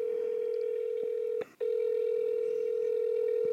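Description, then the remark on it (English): A steady electronic telephone tone on an outgoing call to the caller's brother hums continuously, cut by one brief break partway through before resuming. Clear, with no voices. “I'm going to try my brother again. I feel like he'll answer.”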